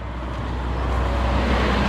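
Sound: car road noise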